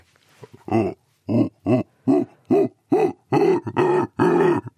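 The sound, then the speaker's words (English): A researcher of primate vocal communication imitates a howler monkey: a rhythmic series of about nine deep, throaty grunting calls that swell into longer, louder roaring bursts toward the end. “I can do a howler monkey for you.”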